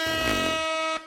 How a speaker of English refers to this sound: That's an air horn.